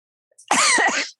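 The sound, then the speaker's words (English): A single harsh, raspy cough bursts out loud after a brief silence, lasting about half a second before cutting off abruptly. “Sorry about the cough.”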